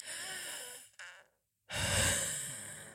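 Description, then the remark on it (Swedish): Someone breathes out close to the microphone: a long airy exhale, a brief pause, then a second, louder and fuller breath rushing out. No one speaks. “Det här var ett vanligt andetag för mig.”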